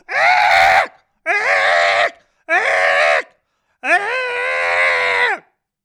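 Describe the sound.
A person imitates a cockatoo with four loud, harsh, raspy screeches, the last one longest, separated by brief pauses, with no other sounds.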